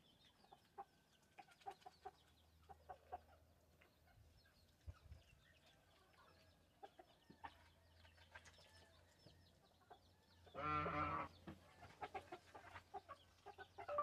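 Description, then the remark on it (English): A gosling, a baby goose taking a bath, gives a run of short, scratchy honks and peeps with one louder, longer call near the end over a faint low hum, in Tucson, Arizona. “Hashtag animal. Hashtag goose. Hashtag baby.”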